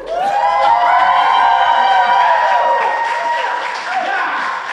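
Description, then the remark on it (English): Loud, sustained audience applause at a live show at the Jaffrey Legion fills the whole stretch, dense clapping mixed with cheering and high whoops from the crowd, easing slightly toward the end. “I like that applause. Let me hear that applause again.”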